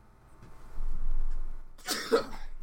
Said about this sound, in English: That was like a snuff, a sneeze and a cough. I was like, weird.